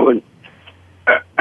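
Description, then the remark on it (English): A person clears their throat in a few short, rough bursts, with brief quiet gaps between them and no words spoken. “This time of the morning, I have a clearing my throat problem.”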